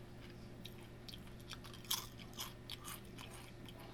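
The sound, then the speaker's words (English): Crisp crunching of Sriracha-flavored tortilla-style chips being eaten, with one sharp bite followed by a steady series of smaller chewing crunches over a low background hum, and no talking. “A little spicy, first thing. Crunchy, salty, spicy.”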